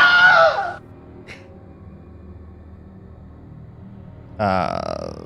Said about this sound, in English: You give it your best scream. I know Kelly won't do it, so I have the Wilhelm